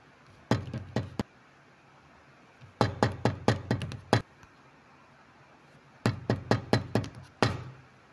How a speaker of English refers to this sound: Really, what's happening? You keep knocking.